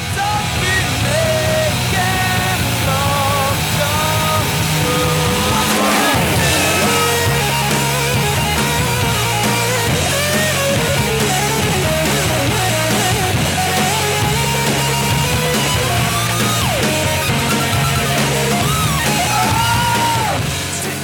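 A loud electric guitar solo wails and bends over a full rock band, with swooping pitch slides and sustained screeching notes riding on steady drums and bass throughout.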